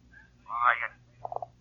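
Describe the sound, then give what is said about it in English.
A brief muffled voice-like sound gives way to three quick, faint tonal blips as a telephone line goes dead after the caller hangs up, over a low steady hum. “hung up.”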